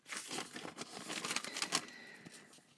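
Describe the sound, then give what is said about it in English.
Quiet scratching of a pen on paper with scattered small clicks and taps, like switching between colored pens mid-writing; steady and busy throughout, with no voices. “Okay, and then I switch colored pens.”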